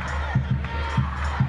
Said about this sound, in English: People are flying rainbow flags. Big crowd of people. They are shouting, rehire. Again, this is Kennedy Catholic High School rally.